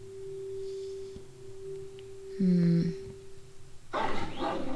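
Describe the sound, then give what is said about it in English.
Male puppies bark and play: a short, loud yelping bark midway, then a burst of rough scuffling and yapping noise near the end, all over a steady electronic hum. “Puppy, no! Stop it, bad boys.”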